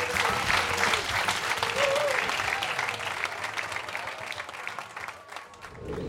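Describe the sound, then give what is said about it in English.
At the end of a show with guest Patton Oswalt, a crowd applauds the Wallace Annenberg steadily for about six seconds. It is a dense wash of clapping that stays loud throughout, with a few faint voices mixed in beneath the noise. “Please give it up for the Wallace Annenberg.”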